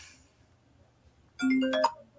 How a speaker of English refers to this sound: Somebody's calling me with that very pleasant new ringtone on my new iPhone 12.